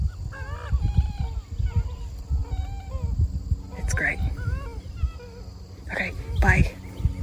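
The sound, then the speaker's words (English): A busy chorus of gallinules and coots: many overlapping clucks, squawks and nasal, honking calls repeating throughout, with a few sharper, louder bursts near the end over a steady low rumble. “A zillion gallinules and coots.”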